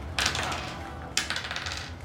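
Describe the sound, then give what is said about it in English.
Damage dice clatter across a hard tabletop in two separate rolls during a tabletop game, each a sharp rattling burst that tumbles and settles. The sound is fairly loud, with no talking. “So that's that, and then I get to roll the same damage dice one more time, right?”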